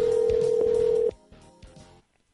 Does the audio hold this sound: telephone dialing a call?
yes